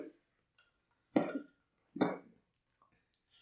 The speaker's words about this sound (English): I'm going to soundbite so many of these fucking coughs. Why? I just need like some particularly rancid ones, you know? You're going to have to take out so many coughs in editing. This is going to be insane.